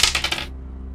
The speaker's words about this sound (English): All right. Let me get some dice. D4.